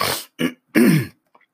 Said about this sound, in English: Let me clear my throat. I hope you don't mind.